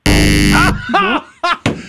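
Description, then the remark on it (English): A loud, harsh game-show buzzer blares once for well under a second, then cuts off as brief bursts of a voice follow; a quiz contestant is buzzing in to answer. “Why are you so quick on the buzzer?”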